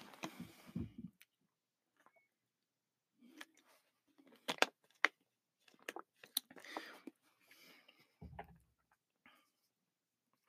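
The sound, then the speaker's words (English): Someone drinks a glass of water: soft sips and swallows, scattered small clicks and taps of the glass, and a few low thumps, all fairly quiet with short pauses between. “I'm gonna get a drink of water before I get started.”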